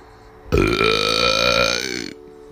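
A single long, loud burp, rumbling and drawn out for well over a second before cutting off abruptly, with no talking.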